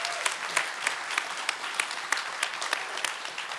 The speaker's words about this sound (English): Yeah, amen. Can we applaud that? Yeah.